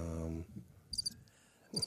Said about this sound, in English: Crickets.